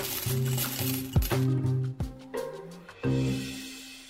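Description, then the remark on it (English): Counterfeit gold coins, made of a silver alloy coated in a thin layer of gold, clink and clatter in several sharp metallic hits spread across a few seconds, with a low ringing hum sustained underneath. No one speaks. “And voila, gold coins, heavy enough and precise enough to pass.”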